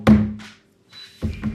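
A door slams with a loud, heavy thud and a brief low rumble, followed about a second later by two softer knocking bumps. No one speaks.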